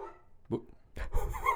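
A dog lets out a few short barks mixed with high whining and whimpering, coming in quick bursts over a second or so.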